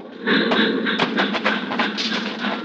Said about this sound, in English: The train rolls by, slowing, and the crossing bell warns that death is here.